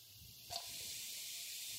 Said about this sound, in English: We are going to put 2 teaspoons of cumin seeds. Once you kind of hear this sizzling sound, so the first thing that we are going to add, about 4 cloves.